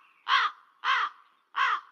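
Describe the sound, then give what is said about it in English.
A crow caws three times in a steady rhythm, each harsh call loud, with short quiet gaps between them and no voices. “there was no crows at the airport.”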